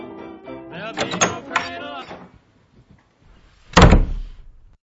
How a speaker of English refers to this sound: Just go open the door. I'll get it.